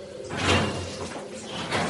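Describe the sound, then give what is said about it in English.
A door is slid open with a rolling, rushing scrape that swells, eases off, then surges briefly again near the end. It is moderately loud, with no one talking. “Whoever has the most courage could open the door”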